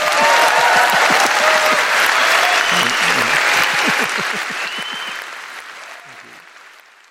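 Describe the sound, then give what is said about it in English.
A large audience claps steadily for Terry Gilliam in a dense, loud wash of applause that holds for several seconds, then gradually fades out, with a few faint voices mixed in. “Please give Terry Gilliam a warm round of applause.”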